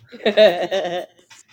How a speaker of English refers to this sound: Wait, did you hear that squeak? Yes. Yeah, Guinness got a new dog toy. I figured.